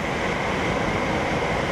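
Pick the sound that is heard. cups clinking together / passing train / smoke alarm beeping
passing train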